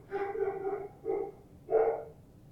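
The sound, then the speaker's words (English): A dog barks three times, a long drawn-out bark followed by two shorter ones after brief pauses, fairly loud with no talking over them. “Uh-oh, there's a predominantly male folk right there. Willie Nelson, my dog, he's mad.”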